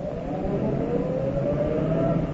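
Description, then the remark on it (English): A steady engine drone with a rising whine holds throughout, a car motor running as the car approaches to turn up a driveway, at moderate loudness, with no voices present. “There's a car. I see it. It's going to turn up our drive.”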